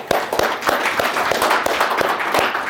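A group of people applaud steadily, many hands clapping at once in a dense, even patter with sharp individual claps popping out of the crowd sound.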